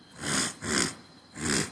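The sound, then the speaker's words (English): Three rough, raspy throat-clearing attempts in quick succession, each a short harsh burst of noisy breath with brief pauses between, moderately loud with no talking. “Can't clear my throat.”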